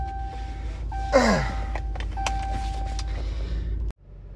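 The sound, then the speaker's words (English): A pickup truck engine starts with a brief whirring crank that drops in pitch, then settles into a steady low idle rumble that runs on before cutting off abruptly. “And let me get this truck started.”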